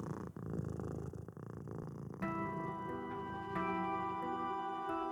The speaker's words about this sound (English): As she dozed off, she thought she heard a familiar purring sound deep in the recesses of the attic.